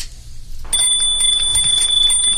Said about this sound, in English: Kathy's Christmas bell, Bert. I had it right in my pocket.